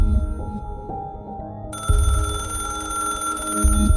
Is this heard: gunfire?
no